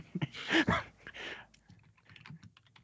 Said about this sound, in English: they have that mechanical keyboard in the back.